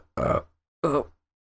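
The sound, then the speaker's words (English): Two short, guttural burp-like bursts from a voice, separated by a brief pause, each rough and throaty and fading quickly into silence. “See, like yeah, it was like I a mean, burp, but you just went.”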